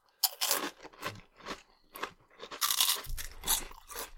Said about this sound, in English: They're very crunchy. This is that shit everybody was waiting for. Don't you hate it? You're eating a crunchy snack, but it's too crunchy so you can't hear the show you're watching.